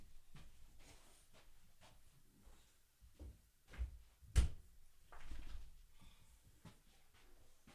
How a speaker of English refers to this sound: Hold on a second here. I got to close that door because these dogs are going to wander around and eat cat shit. Hang on.